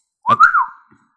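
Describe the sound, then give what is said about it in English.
A short human whistle: one breathy, mid-pitched note that wavers upward, then slides down and fades within about half a second, with no talking. “I can't really remember any specific whistles, but sometimes it'll have a bit of a rhythm to it.”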